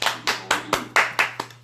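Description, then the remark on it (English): Steady rhythmic hand claps from an audience welcoming a new guest, about eight sharp loud beats in under two seconds, each ringing out briefly before the next, with no voices. “We're going to clap it up for us.”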